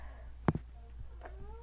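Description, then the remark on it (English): A cat meows faintly with thin, rising cries, after a brief loud knock near the start. No one speaks. “Meow, bitch.”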